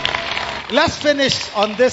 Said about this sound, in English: Clap for Jesus.